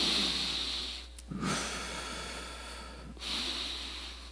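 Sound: person breathing heavily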